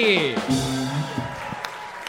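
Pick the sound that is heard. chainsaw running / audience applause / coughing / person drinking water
audience applause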